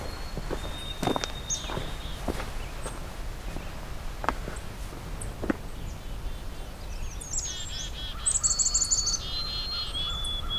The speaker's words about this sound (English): A black-capped chickadee and white-throated sparrow.